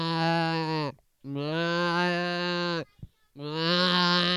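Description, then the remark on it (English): A goat sound effect bleats three times in a row, each call long and loud, with short pauses between them and nothing else in the background, played as a door is opened to reveal a goat. “Goat sound effect.”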